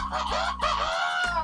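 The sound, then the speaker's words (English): A rooster crows loud, a strained, harmonic call that breaks into a few rising and falling segments, its neck stretched out as it crows, filling the whole moment with no talking over it. “Fucking goddamn roosters.”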